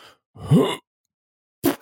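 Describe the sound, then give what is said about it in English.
A person imitates a fart with a short, buzzy vocal blurt. After a brief silence come two quick breathy bursts. The sounds are fairly loud, with no talking. “That's not a funny fart sound. This is a funny fart sound.”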